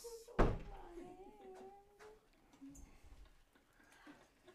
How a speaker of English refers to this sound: Can we shut the door? Yep. You can shut the door. That's fine.